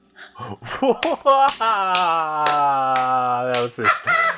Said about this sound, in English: That was a bad one. Okay. I'm clapping at my own joke.